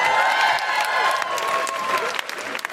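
An audience applauds in a steady, dense wash of clapping, loud throughout, with a faint cheer or whistle tone riding over it before the clapping thins out at the end, as an audience member is invited up onto the stage.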